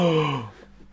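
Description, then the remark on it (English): A single exaggerated, theatrical, sarcastic gasp from one voice, loud, with a voiced tone that slides downward and trails off after about half a second. No words are spoken. “You know, it's so hard to tell when your gasps are sarcastic.”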